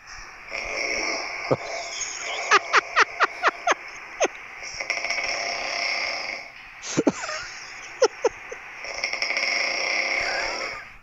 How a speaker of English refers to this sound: And I'm usually at the mild level, but at 5 a.m., it was epic. And it doesn't sound like snoring to me. It sounds like I'm about to die.